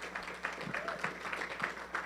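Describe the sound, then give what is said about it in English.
An audience breaks into steady, dense applause for six churches being launched by ARC that day, a continuous crackle of many hands clapping at once, with a few scattered voices mixed into the noise. “Yeah, that's worthy of applause.”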